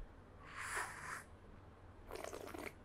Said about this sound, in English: So we do a thing called the slurp.